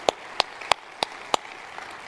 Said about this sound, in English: So let's give Port Perry a huge round of applause.